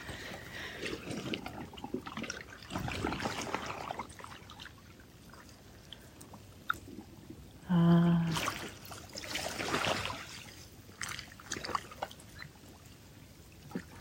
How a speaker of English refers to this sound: I'm coming to you this morning from Wild Goose Bay. A little bit different, and it's amazing the different sounds of the water here, the view.